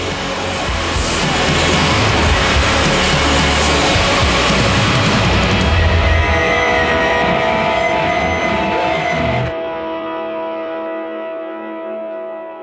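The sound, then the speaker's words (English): Music smothered in a loud, dense wash of reverb-soaked white noise; near the end the hiss cuts away, leaving sustained, echoing tones ringing out. “But yeah, you hear it now, it's like really white noisy, it's like just drowned in like reverb-y white noise.”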